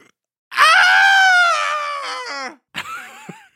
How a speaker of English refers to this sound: Starts as kind of a loud yawning noise and turns into a scream.